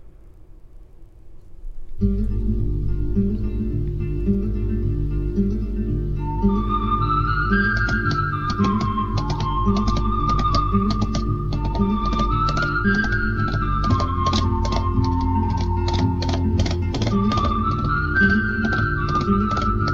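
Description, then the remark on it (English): After about two seconds of silence, a film music theme starts at a steady, fairly loud level: a low sustained bass, a high melody line gliding above it, and frequent sharp percussive hits including gunshots, with no talking. “So we do have the theme here for you.”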